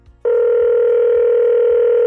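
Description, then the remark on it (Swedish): A steady, single-pitched telephone ringing tone on an outgoing call to a well-known presenter of the Swedish programme Lilla Sportspegeln starts after a brief pause and holds loud and unbroken to the end, with no voices. “Och för att ösa kärlek över Lilla Sportspegeln tog vi såklart och ringde upp en av programmets mest profilerade programledare.”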